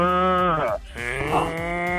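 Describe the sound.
A person does a loud cow impression: two drawn-out, throaty moos with a brief break between them and no other talking.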